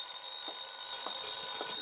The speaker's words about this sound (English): Then the phone rang.